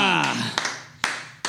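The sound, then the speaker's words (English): A voice trails off, then three sharp hand claps ring out at a steady, unhurried pace, each about half a second apart, over a faint lingering tone; the claps were made by the ad's creators themselves for a grocery store radio ad, recorded in a lounge room. “We clapped ourselves.”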